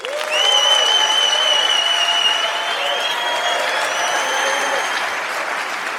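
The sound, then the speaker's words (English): Steady, dense audience applause for a guest being introduced starts abruptly and holds at an even, loud level throughout, with long whistle-like tones riding over the clapping. No one speaks. “Give it up for Master Brew.”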